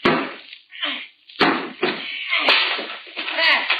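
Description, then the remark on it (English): A series of sharp wooden knocks and thumps as a sawed piece of wood around the doorknob is banged out of a bathroom door until it falls out, with a few strong impacts spread irregularly over a few seconds. “Now, just see if you can knock that piece out, will you?”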